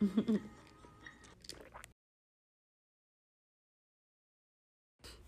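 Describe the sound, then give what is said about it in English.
A sip of Electra Moscato wine by Quady, with wet slurping and mouth sounds for about two seconds, followed by sudden silence and then a faint return of noise. “So I'm going to go ahead and take my sip and then we're going to get with this conversation.”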